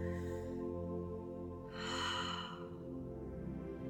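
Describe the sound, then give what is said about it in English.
A person takes a slow, deep breath, drawn in and then let out in a long airy rush, over a soft, steady droning tone in the background. “Just taking a nice deep breath.”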